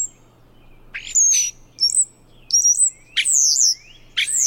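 A European starling sings a loud medley of whistles, rising and falling slurred notes and buzzy squeaks in quick bursts, with a faint steady hum underneath.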